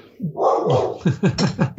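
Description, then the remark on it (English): A female dog whimpers: a drawn-out whine that breaks into a quick run of short, pleading yelps, with no one speaking. “She's telling you. Dog training is my biggest achievement.”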